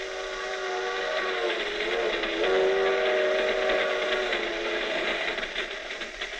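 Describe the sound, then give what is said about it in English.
A steady, loud rumble of a rolling freight train with an empty box car, with a long, wavering steam whistle sounding over it for several seconds before the noise slowly eases. “My back feels broken riding on the floor of this empty box car.”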